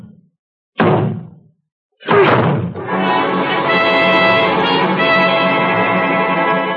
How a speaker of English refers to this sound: I'm to break this door in, or rather we are. But, Dr. Shepard... I'll take the responsibility. Oh, if you say so, sir. All right, here we go. Together now. One. Two. Three.